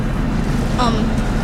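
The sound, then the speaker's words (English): A steady low rumble of a boat engine running as the boat leaves the dock in the middle of the night, continuous and fairly loud, with a brief higher tonal chirp in the middle and some wind-like noise over it. “Both, the engine's on.”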